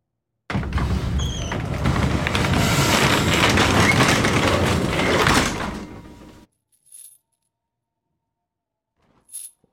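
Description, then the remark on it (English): Several seconds of loud, dense rustling and scraping end abruptly, followed by two brief, sharp knocks on a door, spaced a few seconds apart in near silence. “You can hear the sounds of rustling, closing in, and then banging on the door.”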